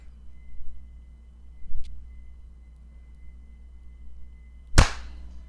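After a few quiet seconds of low background hum, several people clap their hands together at once at exactly 30 seconds to sync a recording, a single loud, sharp burst that quickly fades.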